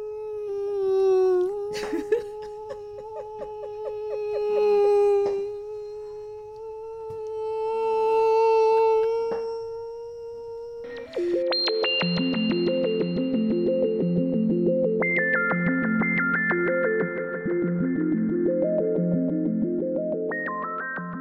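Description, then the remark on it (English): A voice imitates a mosquito with a sustained, nasal buzzing hum that wavers in pitch and swells and fades for about ten seconds, followed by a run of stepped electronic tones. “That is a sound that's the most annoying sound at night when you're trying to sleep and you have an annoying mosquito buzzing around your room.”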